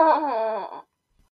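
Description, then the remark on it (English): A small child gives one drawn-out zombie-style moan, a wavering groan that sags slightly in pitch for under a second before cutting off into silence. “Are you a zombie? Zombie, zombie, zombie.”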